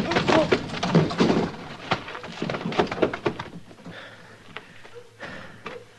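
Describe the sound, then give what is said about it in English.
A heavy punch knocks out a drunk man who had a gun in his hand. It lands amid a brief scuffle of thumps and shuffling, then things quiet down to a few scattered knocks and soft movement. “Did you knock him out? Well, I hit him hard enough.”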